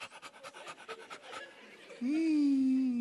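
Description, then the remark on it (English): A person mimics a dog panting with a quick, rhythmic run of breathy huffs, then breaks into a loud, sustained voiced whine that rises and holds steady. “A dog never acts like a cat. A dog goes,”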